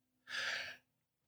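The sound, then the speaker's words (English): A single sneeze, a sudden breathy, hissy burst lasting about half a second that cuts off quickly, heard on its own with no talking. “I didn't think you were that allergic to just being serious about a topic.”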